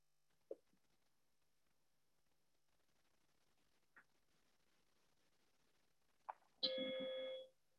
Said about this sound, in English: And when I finish speaking, you will hear a bell. There will be another one at 30 minutes. And then the final bell at the end of an hour, which will be the end of the meditation.